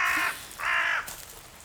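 Two harsh, raspy crow caws in quick succession, loud, each about a third of a second long, with a brief pause between them and no voices.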